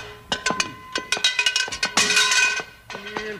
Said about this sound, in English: Bill, that cowbell sounds like it's coming from the inside of the house.